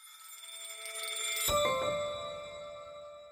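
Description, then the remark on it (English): Church bells ring in Milan, Italy, with steady, overlapping metallic tones, and a fresh strike about halfway through adds a brighter peal that slowly fades. No one speaks over the ringing. “He spoke to me from Milan on the last day of Men's Fashion Week there, and you can even hear the church bells accompanying our conversation in the background.”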